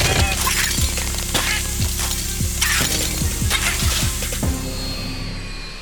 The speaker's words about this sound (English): Some liquid nitrogen should slow their Brownian motion. Suddenly, Hundo starts freezing the humans. Yo, who wants meatsicles? You do. And they start shattering like bits of glass.